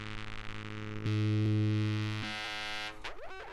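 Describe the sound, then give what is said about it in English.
A buzzy, harmonically rich drone from a Grandmother analog synthesizer played through a spring reverb shifts pitch in a few steady steps, then breaks into brief swooping, springy reverb splashes at the end, with no talking. “And you can hear, you can't really get sounds like that out of anything but like a grandmother with a spring reverb.”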